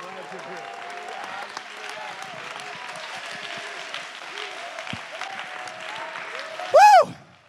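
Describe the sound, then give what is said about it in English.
A church audience, standing, claps steadily in praise in a dense, continuous wash of applause mixed with cheering voices, ending with a sudden loud, high-pitched shout or whoop. “Somebody stand to your feet and lift your voice in the face of every lying devil and clap your hands and give him praise.”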